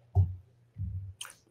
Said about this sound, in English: I know you got, you know, you don't got a beer. So I got my coffee. Cheers to you. Because you guys, let me take a swig.